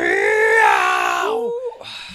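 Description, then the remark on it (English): A person lets out an exaggerated, cartoonish pained scream in the style of Tom and Jerry, one loud sustained wail that wavers and then drops in pitch as it trails off, voiced like a comic impression. “Yeah, that's full Tom and Jerry scream.”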